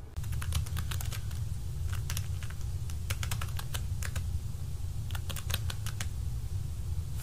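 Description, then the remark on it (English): Rapid clicking of keys on a computer keyboard, coming in irregular bursts over a steady low background hum, fairly clear, with no one talking. “I'm gonna give you my keyboard so you can enter the password yourself.”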